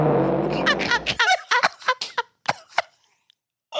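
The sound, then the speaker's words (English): A loud, buzzy fart rumbles for about a second, then breaks into a rapid series of short, squeaky sputters and pops that trail off into quiet. “Here is a Fart A.”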